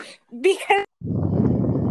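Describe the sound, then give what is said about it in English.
A dog whimpers in a few short, high, wavering whines, then a low, rough, steady rumble takes over for the remaining second. “Because dogs. Because actually, dogs. Dog heads.”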